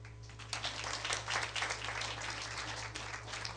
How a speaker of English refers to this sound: Because I know y'all are clapping for the youth, the great disciples.